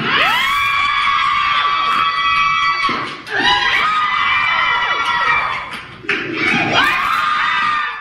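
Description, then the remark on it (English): A loud crowd cheers and screams in three sustained bursts, high-pitched shrieks and whoops layered over a constant roar, with brief dips between the surges, as a Las Vegas woman crushes three watermelons with her thighs in 7.5 seconds, setting a world record. “What is that cheering?”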